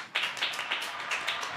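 A small group claps briefly for the show's producer, quick steady hand claps blending into a short burst of applause, moderately loud with no talking over it.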